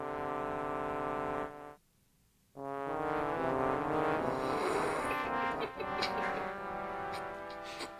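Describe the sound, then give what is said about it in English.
The changed basement music track of a new version of a video game, played on a keyboard with a reedy, accordion-like tone: loud sustained chords, a brief silence after the opening notes, then a fuller, busier passage with bright high accents. “Great keyboard. It's not an accordion.”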